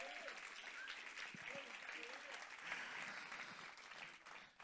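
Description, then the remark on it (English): An audience claps hands in a steady, dense burst of applause lasting several seconds, with faint voices calling out underneath before it tapers off at the end. “If you believe it, you ought to clap your hands and give God glory for that.”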